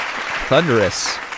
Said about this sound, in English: thunderous applause. Thunderous applause.